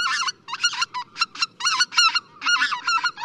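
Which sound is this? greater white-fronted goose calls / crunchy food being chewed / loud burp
greater white-fronted goose calls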